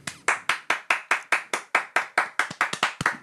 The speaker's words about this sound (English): Give me a round of applause.